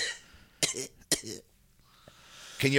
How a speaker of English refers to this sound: Those two coughs were kayfabe. That one cough was shoot.